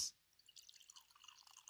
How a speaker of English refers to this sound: So we'll share this. We got some glasses. I would love to try a $1.99 wine. The radio show pour.